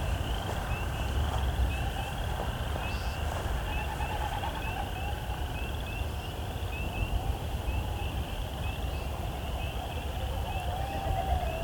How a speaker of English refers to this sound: Hearing a very distant coyote song. Not that dog barking behind me, but way far off. I was hearing a bit of a chorus.